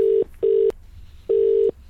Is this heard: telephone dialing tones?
yes